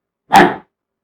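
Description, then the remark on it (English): A person gives one short, sharp bark in imitation of a dog, a single burst lasting about a third of a second before falling silent. “He would always bark. Bark, you understand barking?”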